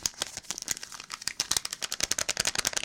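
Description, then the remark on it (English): Dense, irregular crinkling and crackling of a huge sheet of paper being unfolded, a steady flurry of sharp rustles lasting the whole moment, moderately loud with no voices. “This is a huge piece of paper.”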